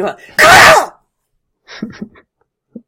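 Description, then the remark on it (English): One loud, explosive sneeze bursts out, sandwiched between bits of a person talking before and after it. “Gesundheit, miss.”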